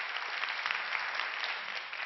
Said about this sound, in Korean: 이렇게 뜨거운 박수로 불러내 주셔서 이야기 시작하기 전에 다시 한번 감사 인사드립니다. 고맙습니다.